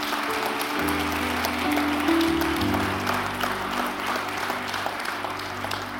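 An audience applauds steadily for several seconds as a clap offering to the Lord, a dense wash of clapping over sustained organ or keyboard chords that shift in pitch, with no one speaking.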